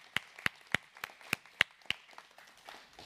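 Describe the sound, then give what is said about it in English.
A church audience claps in unison for its children, about seven sharp, steady claps at an even beat, then the clapping trails off into a faint murmur of scattered noise. “Can we pray for our clap for our children?”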